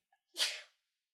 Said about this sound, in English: I might sneeze in a second.